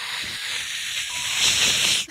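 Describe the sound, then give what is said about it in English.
A dial-up modem's connecting noise: a steady, harsh hiss of static with a thin high whine running through it, rising slightly in loudness before cutting off abruptly after about two seconds. “And the sound of a dial-up modem.”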